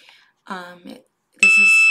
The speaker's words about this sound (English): My phone is actually on silent, you guys. I don't even know why that's doing that right now. So I do apologize. That was my son's Dexcom device. He is a type 1 diabetic